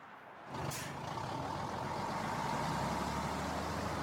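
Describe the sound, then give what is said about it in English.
A tractor trailer truck rumbles, with a sharp hiss of its air brakes near the start, followed by a steady, loud engine drone that continues to the end. “I love driving my tractor trailer, and just like you, I just want to make it to my destination safely.”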